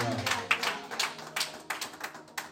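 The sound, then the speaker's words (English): A group claps their hands in a loose, uneven rhythm, sharp bursts of applause-like smacks rising and falling over a low murmur, moderately loud throughout. “Somebody clap your hands and say yeah.”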